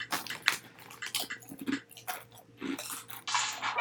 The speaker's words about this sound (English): I'm sorry if you guys hear us chew. Yeah, oh yeah, sorry.